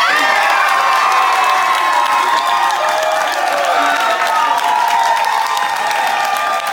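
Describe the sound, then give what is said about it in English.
Family, friends and teammates of Bobby Witt Jr. cheer and whoop loudly and continuously as the Kansas City Royals call his name second in Monday night's Major League Baseball draft, with excited shouting and some clapping blended into a dense, steady roar that holds for several seconds. “That cheering you heard were the family and friends and teammates of Bobby Witt Jr., whose name was called second in Monday night's Major League Baseball draft.”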